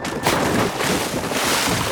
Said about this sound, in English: Oh, wait! We're tipping now to port side! The yoga mats! They flew back up! Everyone brace yourselves! The boat is tipping! We're hitting water!